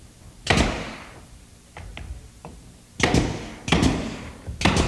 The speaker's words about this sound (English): Now that we have our door set, because of the time factor today, we're going to go ahead and nail this door off with a nail gun.